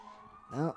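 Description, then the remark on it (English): A police siren from a violent car chase going on outside an apartment holds a steady, high, thin tone throughout the short moment, fairly faint, and a brief louder voiced burst rises over it near the end. “There's a violent car chase going on outside.”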